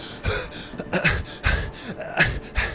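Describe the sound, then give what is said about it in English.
A voice imitates a creature's ragged gasping, a rapid series of breathy, raspy inhales and exhales in an uneven rhythm, fairly loud, with no words spoken. “And you start to see a person, not this, like, weird creature, is, like, looking at you, gasping.”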